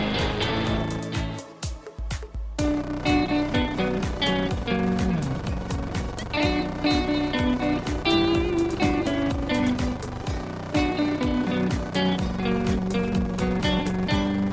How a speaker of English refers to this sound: So I actually wondered if I had gotten a bad MP3 or something, because there's like this farting motorbike sort of sound. It sounds like a motorbike's getting revved up throughout the entire song.